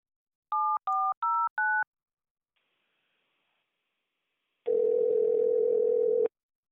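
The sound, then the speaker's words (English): A telephone number is dialed to call a sports shop selling jerseys and hats, with the caller posing as Karl Malone: four quick, evenly spaced dual-tone keypad beeps, then a short pause and a steady, loud, hum-like telephone tone of about one and a half seconds. “So anyway, yep, we'll give them a call as Karl Malone here.”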